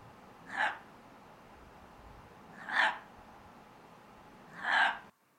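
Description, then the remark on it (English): Three short, harsh, gulping barks spaced about two seconds apart, each a raspy belch-like call from a grey fox in the Sierra Nevada, over a steady low background hiss. “There are grey foxes in these Sierra Nevadas and they sound weird as hell. Here's a fox.”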